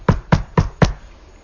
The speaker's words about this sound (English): Ligma knocks on the door.